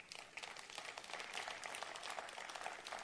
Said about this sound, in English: Got to clap on Wednesday.